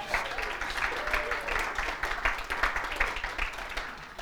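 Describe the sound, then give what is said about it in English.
A crowd applauds a woman, their resident Hebrew scholar, steadily for several seconds, many hands clapping in a dense, crackling wash that stays fairly even before easing slightly at the end. “Can we give her a round of applause there?”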